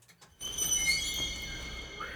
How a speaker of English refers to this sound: Squeak. Sound like a dungeon door.